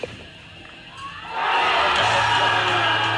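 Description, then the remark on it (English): A crowd at a BMX jam event murmurs quietly, then erupts into loud, sustained cheering with whoops and shouts as a rider goes 14 feet in the air; the cheering swells after a second and holds at full volume to the end. “You can hear the crowd.”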